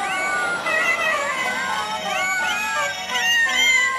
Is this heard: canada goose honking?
no